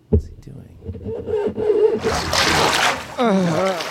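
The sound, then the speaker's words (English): Water splashes and sloshes in a toilet for a couple of seconds as someone plays in the toilet water in a small house's bathroom, a noisy burst, with a person's voice speaking before and just after it. “Is he playing in the toilet?”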